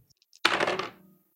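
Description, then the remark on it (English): A brief clatter of dice being rolled, coming up a 7: a sharp burst of hard clicks and rattles that tumbles for about half a second and fades out, heard on its own with no talking. “If the dice agree with me mm-hmm. on that statement.”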